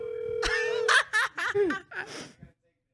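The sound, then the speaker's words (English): A phone rings: a steady tone gives way to a quick run of bright, warbling ringtone notes that stop abruptly after a couple of seconds. “I gotta take this call.”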